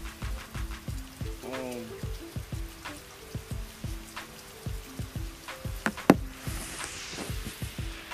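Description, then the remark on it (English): Steady rain falls outside a porch, with drops pattering and dripping over a constant wash of rainfall; faint murmuring voices and a brief squeak sit underneath. “But I'm sitting out on the porch. It's raining. Y'all can hear it, I'm sure.”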